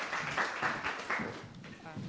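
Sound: audience round of applause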